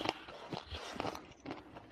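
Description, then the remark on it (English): Crisp, crunchy chewing from an ASMR eating video, with a series of sharp bites and crackles in an uneven rhythm and no one speaking. “Why is it all crunchy?”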